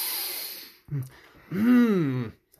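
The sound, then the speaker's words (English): A long, forceful sniff drawn in, followed by a brief grunt and a drawn-out, wavering hum from the same voice. “Leans in, sniffs you like really hard. Like I sniff him back.”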